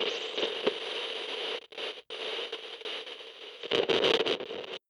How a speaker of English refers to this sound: On April 10th, a brief burst of static reached us from somewhere in the Gobi Desert.